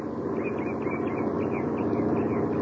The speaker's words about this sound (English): As a truck from one of the neighboring farms approaches, he holds his ancient rifle at his side and waves the truck to a stop.